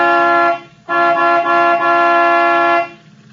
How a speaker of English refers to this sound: All right. I'll give it the horn.